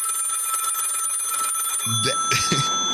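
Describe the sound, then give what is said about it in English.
A telephone bell rings steadily and loudly for most of the moment, its bright metallic trill continuous, before a voice briefly cuts in near the end. “And you see, that's what the Boulé phone is about. You're teetering on a hangable offense. Answer the phone and pivot.”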